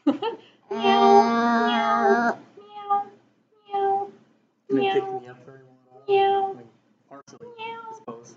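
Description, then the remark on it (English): A person testing a microphone mimics a cat, letting out one long, drawn-out meow followed by several shorter meows at a steady pace, fairly loud, with brief pauses between calls. “So, meow.”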